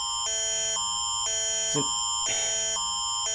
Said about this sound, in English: This Amber Alert's sad, but my God, every time I record something, there's some crazy sirens.